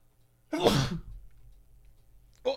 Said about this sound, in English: I did not mean to sneeze on you, my fault.